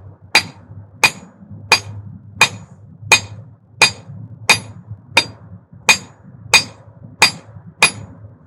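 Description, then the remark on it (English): A hammer pounds on a metal gun to transform it into a plowshare, in a steady rhythm, about a dozen evenly spaced, sharp ringing strikes, with a low rumble in the background and no talking. “So as we gathered out there, it was a time for people to pick up the hammer, to beat that gun, to transform that weapon into a plowshare.”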